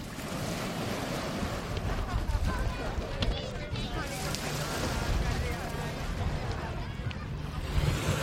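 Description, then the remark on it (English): Steady seaside ambience at Broadstairs in Kent on a sunny summer afternoon: broad, continuous wash of waves breaking on the shore with gusty wind rumbling across the microphone, fairly loud throughout, with faint voices in the background. “As you can probably hear from the background noise, I'm by the sea on a gloriously sunny summer's afternoon here at Broadstairs in Kent”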